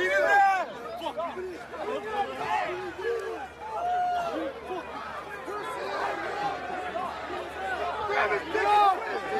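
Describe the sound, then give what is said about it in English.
A dense crowd watching a street fight chatters and calls out at once, overlapping excitedly with occasional raised shouts rising above the steady, fairly loud babble throughout. “There was a street fight that happened there”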